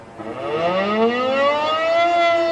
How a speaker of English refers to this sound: Warning sirens wailed across the city, and its people scurried for cover, their radio station urging them to stay indoors.